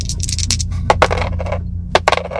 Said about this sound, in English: Some dice rolls to return to the moss lichen room.